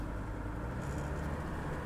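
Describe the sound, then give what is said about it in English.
A steady, low rumble of a car driving in traffic, with engine drone and tire noise holding evenly throughout, with no one speaking. “This is a good way to get used to the idea of forever being stuck in traffic, because I would put this traffic up against theirs any day.”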